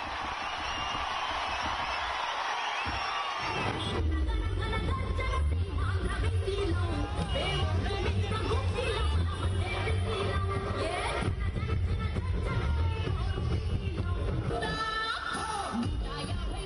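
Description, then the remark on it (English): A large crowd cheers and clamors at the CBN roadshow arriving at NTR Square in Vijayawada, Andhra Pradesh, as night falls, in a loud, continuous wash of voices over a low rumble, preceded by a few seconds of tonal, music-like sound. “The crowds less frenzied than at Jagan's rallies, but large in size.”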